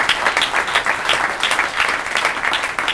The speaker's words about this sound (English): Thank you, Zanies. Let's give Zanies a big round of applause.